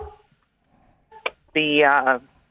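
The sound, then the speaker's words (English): A dog barks, first a short sharp yip and then a longer, drawn-out tonal bark that wavers in pitch before cutting off, with quiet background in between. “Sorry, now my dog has decided to bark.”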